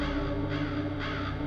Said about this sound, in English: Listen to the approaching crow, floating in the deep gray sky. The crow knows about your golden hold.